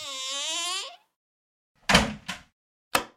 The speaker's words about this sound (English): I lift it, knocking a few dry flower petals to the ground in the process, and the key is right where it's supposed to be. I take it and unlock the door, letting myself inside.